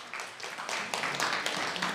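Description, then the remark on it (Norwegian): A crowd applauds two preaching couples, many hands clapping in a dense, continuous patter that stays fairly loud and even throughout, with no voices standing out. “Skal vi gi dem en herlig klapp?”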